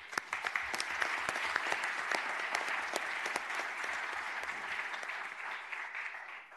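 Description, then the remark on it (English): A round of applause at a Clark County Commissioners event, honoring people for their work in the community: many hands clapping in a dense, steady patter of sharp cracks that holds for several seconds, then thins and fades at the end. No one speaks over it. “And we're going to go ahead and give you a round of applause before we start the video.”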